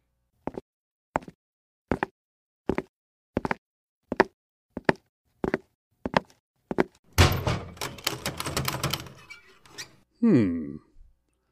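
A bolted, locked wooden door is rattled against its bolt: about nine evenly spaced thumps, then a few seconds of loud, continuous clattering and shaking, ending in a brief creaking sound. No voices.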